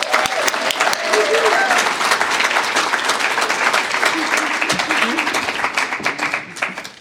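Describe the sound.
Sustained applause from an audience, a dense wash of many hands clapping at a steady loud level for several seconds, with faint voices and a few cheers mixed in before it tapers slightly.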